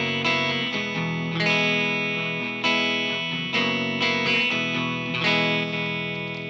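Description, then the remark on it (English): Overdriven electric guitar chords played through a Vox amp with the guitar's volume knob rolled back, struck one after another and left to ring, with a thin, boxy, telephone-like tone lacking body. No one speaks over the playing. “They get really thin and almost like this telephony like effect.”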